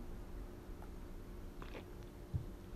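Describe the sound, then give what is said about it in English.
Quiet mouth sounds of someone sipping water: a soft slurp partway through and a small gulp or clink near the end, with no talking. “I'll take a deep breath and sip some of my water.”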